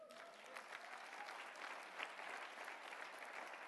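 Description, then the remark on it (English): A crowd applauds steadily, many hands clapping in a dense, continuous wash of sound that holds at a fairly even level throughout, with no voices standing out. “I thought you'd clap for that one.”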